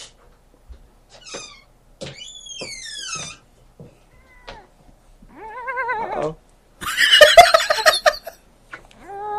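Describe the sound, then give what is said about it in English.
A female cat being picked up makes a string of short chirps, trills and squeaky little cries, fairly loud, ending in a few brief meow-like squeals amid faint handling rustles. “Stop making dumb little noises and meow.”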